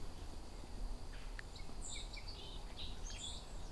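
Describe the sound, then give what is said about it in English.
A faint song sparrow sings, a short run of high, bright notes and buzzy phrases over a steady outdoor hiss, with no voices. “Song sparrow song.”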